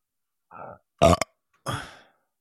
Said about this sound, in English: What the hell was that? A burp. Why? Because I had to burp. Because I drank Coca-Cola. And there's bubbles in that shit. And then when the bubbles go to your stomach, they make you burp.